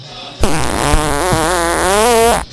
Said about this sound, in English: Wow. That was a hearty one right there. This fart track you've got going is just outstanding. This is a solid one.